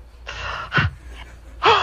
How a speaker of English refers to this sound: Breathing heavy.